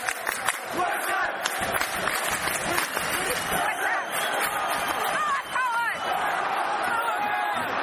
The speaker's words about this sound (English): Whistles are being blown. It's about 30 seconds remaining of normal time. If the referee blows it, everyone's whistling in the ground.